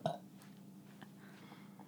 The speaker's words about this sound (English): Ladies and gentlemen, I just pulled a Dean Barry Hebsher and I burped on the pod, okay?